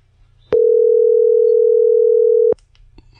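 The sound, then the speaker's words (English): A single steady telephone ringback tone of an outgoing call that goes unanswered sounds for about two seconds, loud and clear with no talking, framed by faint line hiss and small clicks before and after. “God, nobody answers their phone anymore.”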